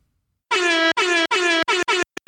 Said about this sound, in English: That's a fart. That's not a horse noise. It's an air horn.